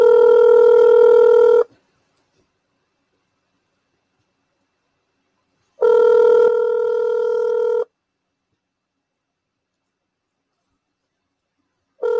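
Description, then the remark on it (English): A telephone line rings as a caller who was cut off is called back: steady bursts of about two seconds of tone, then roughly four seconds of silence, repeating three times. The ringing is clear and moderately loud, with no talking. “If he answered the phone, that would be great.”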